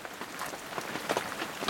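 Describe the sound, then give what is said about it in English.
A light drizzle of rain falls on a hiking trail beneath granite peaks in New Zealand, a soft, steady patter of fine drops with faint scattered ticks, fairly quiet and continuous with no voices. “A drizzle began, and I couldn't wait to take off my boots and make a fire.”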